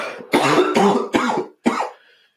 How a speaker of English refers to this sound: I think it was that cough.